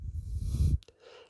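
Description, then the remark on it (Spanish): A deep, slow breath pushed out steadily for under a second with a breathy rush, then a brief click and a faint, quiet tail of air: an exhale while sitting upright during a guided breathing exercise, after a slow, long, deep inhale held in. “Dios, Dios, inhalemos lento, largo, profundo y retengamos. Nos sentamos erguidos y exhalamos.”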